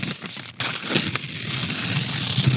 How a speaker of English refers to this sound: I have no idea. I'm tearing up paper.